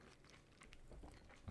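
Wet chewing sounds from two people eating juicy orange slices, with soft squelches and occasional crunchy bites, no talking.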